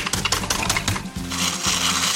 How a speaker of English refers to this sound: So I'm smashing up one package of graham crackers.